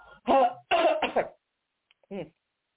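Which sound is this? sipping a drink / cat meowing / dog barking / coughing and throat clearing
coughing and throat clearing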